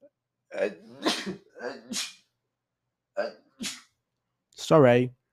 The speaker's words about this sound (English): Also at 8, I need to sneeze.